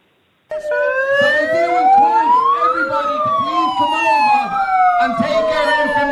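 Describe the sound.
A loud hailer's siren function, used by an opposing group to drown out a speech, wails steadily, its shrill pitch sweeping slowly up and down in overlapping glides for several seconds, with muffled voices faintly underneath.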